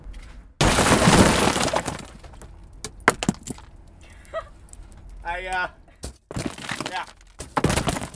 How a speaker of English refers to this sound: Do I want you to smash more glass? Is that what you're asking me?